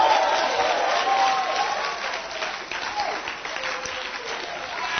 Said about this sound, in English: Oh, clap your hands for the scripture.